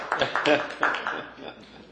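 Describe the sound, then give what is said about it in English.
Scattered hand claps, several sharp bursts at an uneven rhythm that thin out and fade over about two seconds, with no one speaking. “Was that a clap that you're not running?”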